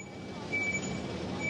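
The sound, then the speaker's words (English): Large tour buses rumble and move around among visitors in the city of Dresden, a steady engine drone filling the background while a high, thin beeping tone sounds intermittently over it. No one speaks. “Yeah, I mean, you can probably see all the visitors and tour buses moving around behind me here.”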